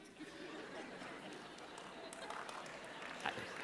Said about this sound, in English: Terrible time to applaud right there, whoever's doing that right there.